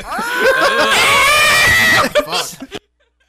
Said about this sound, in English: We know that …'s horny as hell in cat form. …'s guttural scream ruined the audio.